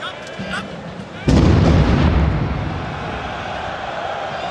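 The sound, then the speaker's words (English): During a soccer match at the Stade de France, a steady stadium crowd murmur is broken by one sudden, loud explosion, a deep boom that echoes and rumbles away over several seconds while the crowd noise continues. “this vine making the rounds of the game at the Stade de France, and you hear the explosions in the background”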